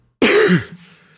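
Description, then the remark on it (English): A single harsh cough bursts out, rough and throaty like a throat clear, then fades within about half a second, with no talking around it. “The coughing made me worried about it.”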